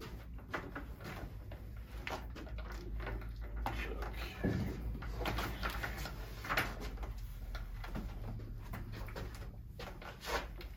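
Crinkling and scraping as the plastic shrink-wrap on a gatefold, two-album, 180-gram vinyl record is picked at and torn open, with scattered sharp clicks and rustles and a low hum in the background.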